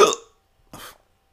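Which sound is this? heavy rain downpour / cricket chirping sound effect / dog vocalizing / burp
burp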